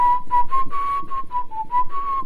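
A breathy, hollow note blown across a bottle mouth, sounded in about eight short puffs at a steady mid-high pitch that wavers and dips slightly, with airy hiss and no talking.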